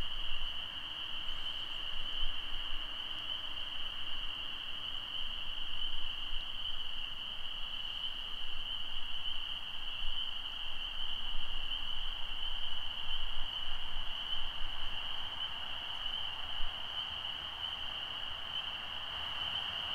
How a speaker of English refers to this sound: Relax and listen to the frogs.